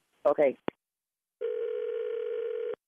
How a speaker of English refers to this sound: I gotta run. My other phone is ringing, okay?